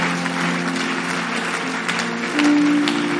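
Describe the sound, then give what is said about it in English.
An audience claps steadily to praise God, a dense, continuous patter, with sustained low organ or keyboard notes humming underneath and one held tone rising slightly louder near the end. “Can you clap and give God a mighty praise?”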